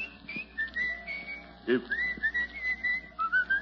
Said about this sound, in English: What are you doing whistling Pale Hands?